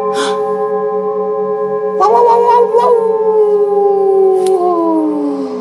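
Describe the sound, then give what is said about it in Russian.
A wolf cub's long, drawn-out howl that swells and then slowly slides downward in pitch, over a steady low hum with no talking. “Я волчонок. Зачем вы меня поймали?”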